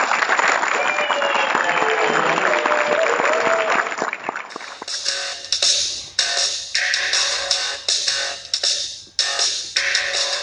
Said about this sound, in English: Well, that is going to do it for the, well, script reading and Q&A. So everybody give them a big round of applause.